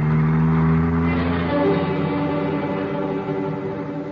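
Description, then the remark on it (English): A car engine drones steadily, its low hum shifting pitch partway through as the vehicle changes speed, continuing loudly throughout with no voices. The car is trailing another car for almost three hours. “Almost 3 hours, we trailed Crowder by car, never getting too near him, just pinpointing him.”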